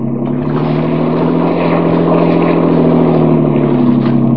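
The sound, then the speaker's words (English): A motorboat engine drones loudly and steadily as the boat is pushed for more speed, a constant throbbing hum with no pauses and no voices for the whole stretch. “Get more speed out of this. I can't, Dan.”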